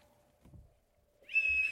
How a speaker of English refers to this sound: You can do all the slide whistle you want. I loved it last week. It always made me happy.